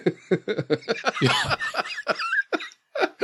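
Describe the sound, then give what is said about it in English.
A fairly loud coughing fit: a quick run of short, throaty bursts, one harsher rasping cough in the middle, then a few spaced-out coughs that trail off, with a laugh-like edge. “You're going to get me in a coughing fit. I don't know if you could hear that.”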